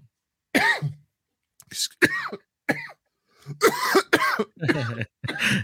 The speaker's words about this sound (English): has a little coughing fit, are you all right, dude? Energy drink. Wrong pipe.